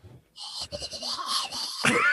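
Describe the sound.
A voice imitates the noise of air rushing through an open mouth while wearing a nasal mask in sleep, a hissy, fluttering breath noise lasting about two seconds that swells at the end into a louder, rising squeaky whoosh.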